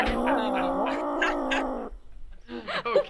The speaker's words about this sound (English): Red Band's got an entire angry cat board in front of him.